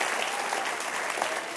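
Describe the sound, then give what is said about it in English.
A church audience claps steadily, a dense wash of many hands applauding at once with no voices standing out, loud and even throughout, making noise for the church's upcoming Red Weekend. “Now, a bunch of you are like, I'm clapping, but I don't know what I'm clapping for.”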